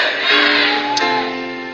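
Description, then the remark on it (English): A large crowd shouts together in a loud, sustained roar of voices, an audience calling out amen during a church service, filling the space for a couple of seconds before slowly fading. “Shout to the powerful, amen. Come on, louder.”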